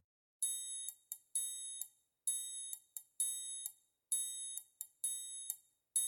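A triangle in a piece of music rings brightly in quick repeated strikes, short bursts grouped into a steady rhythmic pattern with brief gaps, each hit shimmering like a small bell before being cut off. No voices.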